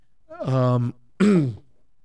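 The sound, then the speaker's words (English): A person with a cough and an irritated throat clears their throat twice, two short, voiced, gravelly bursts separated by a brief pause, with no talking. “Thank you for taking the time to listen, especially with my annoying throat going on here with a cough, having to sip tea all the time.”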